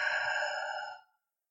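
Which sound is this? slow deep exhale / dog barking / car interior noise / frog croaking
slow deep exhale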